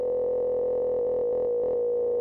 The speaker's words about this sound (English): I haven't listened to it since I wrote it, but it's basically just sine waves, and it's, you would never ever get that idea from listening to it, and it's just sine waves, so it's really boring.